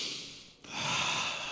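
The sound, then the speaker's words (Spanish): A person draws in a long, deep breath, pauses briefly, then lets it out in a slow, airy exhale, with no talking. “Y hizo sus ejercicios de respiración.”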